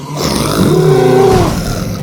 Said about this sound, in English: He let out a threatening roar.